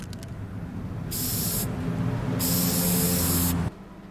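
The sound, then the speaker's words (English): Two bursts of a spray paint can hissing, a short spray followed by a longer one, loud over a low steady rumble. “So it's the spray paint.”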